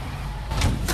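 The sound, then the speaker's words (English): A spaceship door slides and is shut against strong wind with a soft, unconvincing thunk, heard over a steady low rumble. Brief bursts of hiss come near the end. “And I'm sorry, that didn't make a solid enough thunk when she shut it.”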